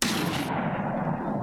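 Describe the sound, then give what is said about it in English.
A single loud gunshot, fired at a creature and hitting its shoulder, cracks out sharply, its bright edge cutting off quickly and leaving a heavy, rumbling low roar that carries on steadily without any voices. “I saw the shot go right into the thing's shoulder.”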